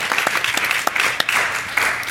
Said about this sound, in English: All right, well, thank you so much, and thanks for those that stayed, and let's give everyone a round of applause.